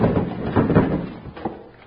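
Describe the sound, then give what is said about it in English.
A door to a room is kicked open with heavy impacts: a cluster of loud wooden thuds and rattles, then a final bang as it gives way. “All right, stay back, folks, while I kick in this door.”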